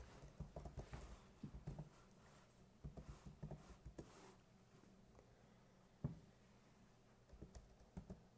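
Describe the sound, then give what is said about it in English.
Quick, irregular clicking of keys on a computer keyboard set to Greek, in bursts with short pauses and one louder tap near the end, while looking up a Bible verse; fairly quiet, no voices. “my keyboard turned to Greek, so it's not bringing me to Samuel”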